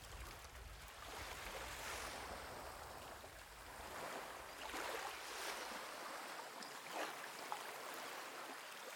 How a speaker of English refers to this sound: So sit back in your beach chair, take a sip of that three-ingredient cocktail, and listen to the sounds of the ocean tide as it gently beats back the shore.